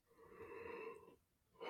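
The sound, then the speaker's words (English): A person lets out a long, drawn-out yawn, breathy and faintly voiced, trailing off before a short exhale at the end. It is fairly quiet, with no talking. “You're yawning when you did it right on cue.”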